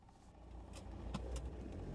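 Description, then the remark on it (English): A car engine roars steadily as the vehicle speeds through the streets toward a hospital, its low rumble rising slightly, with a few brief whooshing and rattling bursts over the constant drone. “Jones is behind the wheel of his car, speeding through the streets towards the hospital”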